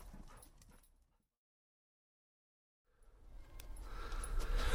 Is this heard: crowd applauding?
no